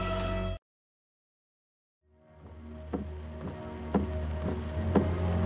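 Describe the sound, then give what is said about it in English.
Heavy rain drums steadily and loudly on a car roof and slashes the windshield, with a low engine-like rumble beneath and occasional sharper thuds of bigger drops, starting after a brief silence. “Rain slashes the windshield, hammers down on the roof of the car with the sound of everything breaking down, broken up, 1,000 sharp shocks falling against the world every second, against me.”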